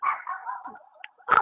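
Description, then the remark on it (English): A dog whines and yips in a drawn-out, wavering cry, then lets out one sharp, loud bark at the end, with no talking. “Are the dogs too much?”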